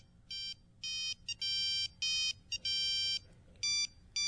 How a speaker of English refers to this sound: And you get 3 free alert ringtones.